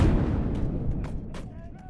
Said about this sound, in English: As the rebels finally came over the walls, realizing their situation was hopeless, the defenders decided to blow up the magazine. A crash of thunder followed.